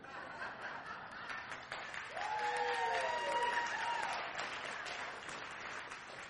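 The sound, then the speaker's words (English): An audience claps for the Lord during a talk about anger, in a steady, dense patter for several seconds, swelling slightly in the middle where a sustained voice-like cheer rises and falls over the applause. “You know, we're clapping for the Lord when He's speaking to us, right?”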